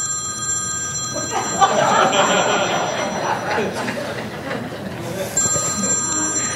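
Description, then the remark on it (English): A telephone rings with a steady, high electronic trill, breaks off during a stretch of busy, muffled crowd noise, then starts ringing again near the end, fairly loud. “But what if you were to get a call from the president of the United States of America?”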